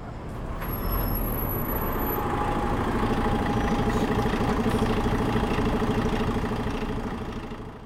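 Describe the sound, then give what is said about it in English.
An old, almost empty bus that looks long unserviced rolls up with a hiss of air brakes, then its engine settles into a steady, rumbling idle, with a faint high whine on top. “The bus has arrived.”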